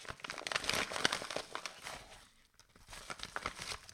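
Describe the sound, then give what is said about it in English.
Busy crinkling and rustling of paper slips, each marked with a year, being stirred around inside a bag by hand to draw one, with a brief lull midway before the shuffling picks up again. “I have my bag full of the years, and I'm going to delve in.”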